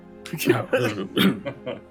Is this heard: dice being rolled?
no